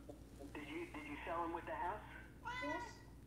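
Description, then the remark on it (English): A cat named Namur meows several times in a row, drawn-out, wavering cries, with a faint steady hum underneath. “Whether the cat comes with the house, I don't know.”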